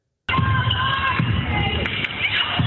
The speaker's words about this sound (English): Bap, bap. Right? Spike, ball to the head. And someone in the crowd gasps.